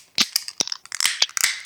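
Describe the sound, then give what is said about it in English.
A beer can tab being cracked open: a quick run of sharp, bright metallic clicks and crackles spread over about two seconds, fairly loud, with no talking. “And let's grab our glass and let's get our hand on the right tab. Let's open her up.”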